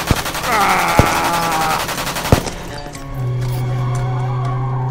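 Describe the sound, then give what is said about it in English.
Three sharp, loud gunshots, fired wildly at a car with bullets piercing its windshield, crack out over a harsh, rising squeal of skidding tires and rumbling engine noise, followed by a steady low engine drone as the car pulls away. “Once again blinded, I grabbed the gun from the corpse next to me and fired wildly. I heard bullets piercing the windshield”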